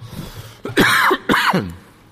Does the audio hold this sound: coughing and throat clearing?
yes